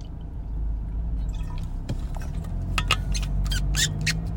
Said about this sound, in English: Excuse me. Yeah, I think, get my water going here.